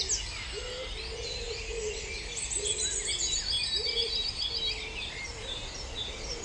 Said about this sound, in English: So the wave of human silence revealed another world of sound, of birds and insects and other animals, as well as the sounds of rain and wind.